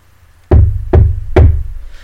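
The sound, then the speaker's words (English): Three firm knocks rap on a car window, made by a girl outside the car door with a couple inside, at an even, deliberate pace, close and loud, each with a short hollow ring, followed by quiet. “Knock, knock, knock. A knock at the window.”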